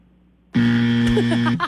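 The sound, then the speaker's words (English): A loud, harsh game show buzzer blares for about a second to buzz a player's answer during a quiz, a steady low droning tone with a rough edge, cutting off abruptly. A voice briefly follows at the end. “I just wanted to buzz you on that one.”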